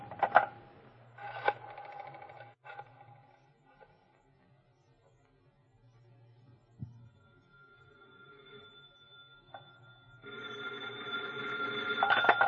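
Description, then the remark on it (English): A phone is dialed with a few clicks and short tones, followed by a pause and then a loud, insistent telephone bell ringing. “Hand me the phone.”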